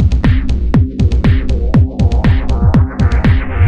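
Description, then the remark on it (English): A fast, steady heartbeat sound effect: loud, deep thumps with sharp attacks repeating in quick pulses over a low, sustained droning tone. No one speaks. “I'm trying to keep the heart beating, but it's really hard down here.”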